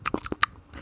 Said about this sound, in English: ASMR, of course, is when you get closer to the microphone. You go, like I'm chewing.